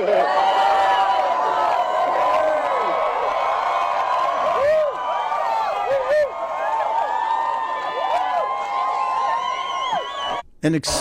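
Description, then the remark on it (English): A large crowd cheers loudly and continuously for about ten seconds after Johnny Depp asks when an actor last assassinated a president, with overlapping shouts and whoops rising and falling in pitch before cutting off abruptly. “A loud extended cheer. It's like 10 seconds of cheering from the people in this crowd.”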